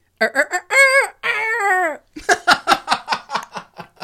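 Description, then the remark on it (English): A voice imitates the odd crow of the speaker's own rooster, somewhat like Woody Woodpecker: a few short clipped notes, then two long, strained, wavering tones. A run of rhythmic, breathy laughter follows. “Our rooster, let's see if I can do this.”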